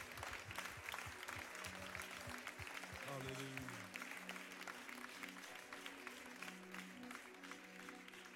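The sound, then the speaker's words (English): A church audience claps their hands to thank God during a service, steadily for about eight seconds, a dense, sustained patter of many hands, with low sustained tones and indistinct voices underneath. “Why don't we clap our hands and thank God for cleansing us today, for washing us today.”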